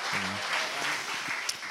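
A crowd claps steadily in a dense, continuous burst of applause filling the room, with a brief low voice murmur near the start.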